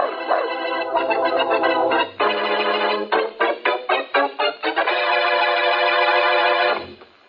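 Two champion boxer dogs, Angel and Spartan, bark and howl loudly, with long drawn-out yowling broken in the middle by a rapid run of short, choppy barks, then one more sustained howl. No one speaks.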